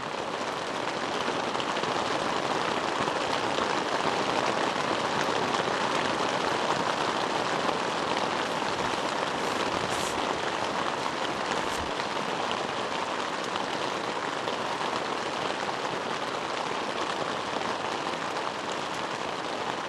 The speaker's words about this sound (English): So yeah, I'm just going to let the rest of this rain play out, because I packed this fucking thing up there to record stuff, and this is all I recorded. And I'm going to use it for something. So enjoy.